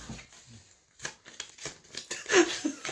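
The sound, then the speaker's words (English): Card shuffling: a series of quick, crisp papery riffles and taps that grow busier and louder toward the end, with a faint low murmur near the start. “And that gets shuffled back in?”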